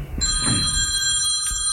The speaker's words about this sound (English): And whose damn phone?